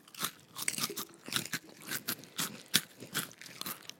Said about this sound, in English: Mm. This doesn't bother me as much as it should bother you. My own chewing doesn't bother me.